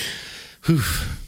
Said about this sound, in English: I'm breathing hard again.